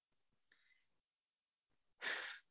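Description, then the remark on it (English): A faint, soft intake of air, a short pause, then a loud, breathy rush of air lasting about half a second, with no talking. “Taking a breath, always, always breathing.”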